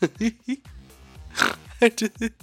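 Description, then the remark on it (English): A short, low, rumbling burp sounds in the middle, surrounded by quick voiced bursts of talking before and after. “And don't forget, I just burped.”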